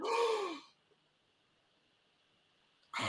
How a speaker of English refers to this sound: You can't gasp at me.